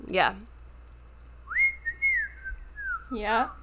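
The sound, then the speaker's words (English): A person whistles a short melodic phrase, a clear steady tone that glides and shifts pitch across a few notes, with brief bits of voice just before and after. “yeah, the rooster who tells the tale and like does the whistling.”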